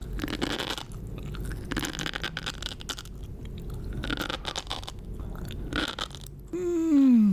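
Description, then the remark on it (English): Loud, crunchy chewing of what is served as fried chicken but is really a chicken and Kowakian monkey-lizard blend, with repeated wet bites and crackly crunches for several seconds, then a sudden falling, whistle-like tonal sweep at the very end. “This is the best fried chicken I've ever eaten today.”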